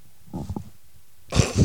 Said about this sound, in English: let's listen to Michael put on his headphones